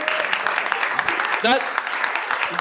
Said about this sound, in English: That round of applause counts as an encore when she comes back, okay?